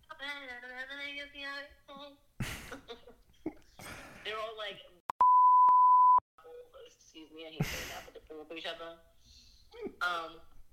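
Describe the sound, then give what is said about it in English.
A single loud, steady censor bleep tone lasting about a second cuts into lively conversation, with people talking and chuckling before and after it. “I just beep it out like you cursed.”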